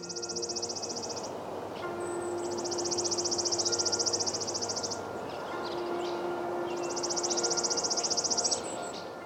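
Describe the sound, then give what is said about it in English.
A chipping sparrow sings three dry, rapid trills of high, evenly spaced chips, each lasting one to a few seconds with short pauses between, over a steady low background hum. “The song of the chipping sparrow is both easy and difficult to learn.”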